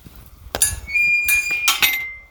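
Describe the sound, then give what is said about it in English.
The metal latch of a little gate into the woods clinks and clanks in three or four sharp knocks, each leaving a bright, high metallic ring that lingers and fades, on a cold, damp day. No voices are heard. “Heading into the woods now, through a little gate.”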